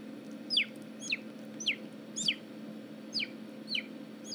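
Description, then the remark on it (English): A voice imitates a small bird tweeting: seven high, quick chirps that each slide downward, spaced about half a second apart in a steady rhythm over a low background hum. “But wouldn't it be so cool if like dinosaurs like tweeted like little birds or something?”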